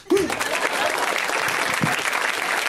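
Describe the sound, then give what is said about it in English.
A live audience claps steadily, a dense wash of many hands sustained for a few seconds, with a brief voice or cheer at the very start. “You should just clap.”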